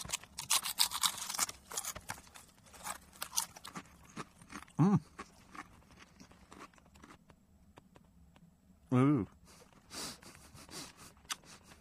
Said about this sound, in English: You don't like slurping. You won't like this bit at all. I'm not sure if it tastes like a Christmas tree.